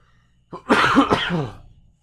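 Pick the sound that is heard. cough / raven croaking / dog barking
cough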